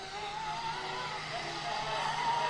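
A steady engine whine with tonal harmonics drifting in pitch, like a car revving or skidding at a racetrack, holding at a moderate level for a few seconds with a faint background hum.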